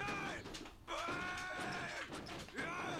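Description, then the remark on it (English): A garage door opener, started with a button press, whines and rattles steadily as the door opens, its droning hum briefly cutting out before grinding on again as the mechanism stops partway. “I just press this button, and the door opens like magic. Why does it stop there?”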